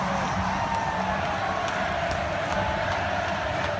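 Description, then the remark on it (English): A huge crowd celebrating after the Blackhawks won the Stanley Cup, with smoke in the middle of the crowd, roars and cheers in a dense, continuous wash of noise that stays steady and loud throughout, with no single voice standing out. “There's like smoke in the middle of the crowd. This is after the Blackhawks won the Stanley Cup.”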